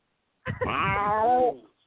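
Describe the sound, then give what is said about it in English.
A single drawn-out cat meow, fairly loud, rising then sliding down in pitch over about a second, with no other sound around it. “Meow.”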